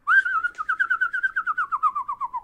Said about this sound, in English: Yeah, I guess you need to have like the whistling ability, but just hear me out.